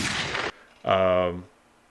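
A single harsh gunshot sound effect, a half-second burst of noise, followed by a short pause and a brief voiced tone; loud.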